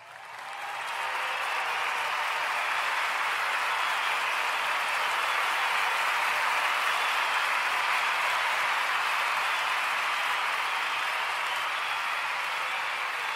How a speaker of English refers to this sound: No, that applause is not for me. No, that applause is not for me. I wish it was.